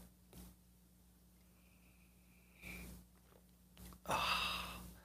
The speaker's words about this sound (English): That is the excitement, which is called the simultaneous sip. Go!